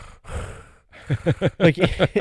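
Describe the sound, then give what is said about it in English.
A person imitates a moviegoer's loud, snore-like heavy breathing: a long breathy exhale, a pause, then a string of rapid, rasping, rhythmic snorting breaths. “He sounded like my dog when he snores at night.”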